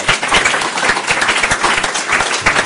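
An audience applauds a discussion panel steadily, many hands clapping in a dense, continuous patter that stays loud and even for a few seconds.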